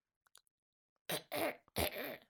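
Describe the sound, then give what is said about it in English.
A person acts out a harsh, throaty coughing fit for the character Tick: a few faint clicks, then several loud, raspy bursts of coughing and throat clearing in quick succession. “He coughs.”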